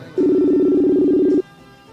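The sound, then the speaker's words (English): A phone line's ringback tone sounds once, a loud steady two-pitch burst lasting just over a second, then cuts off into quiet line hiss as the call waits to connect. “Okay, it's a ringing.”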